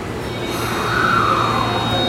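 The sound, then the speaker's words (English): A busy subway station, Otemachi Station in Tokyo, as a train comes in: a steady, loud low rumble of trains fills the space, with a brief high metallic wheel squeal rising midway through and no clear voices. “I am currently at Otemachi Station, which is one of Tokyo's largest train stations, as well as one of the busiest in metropolitan Tokyo.”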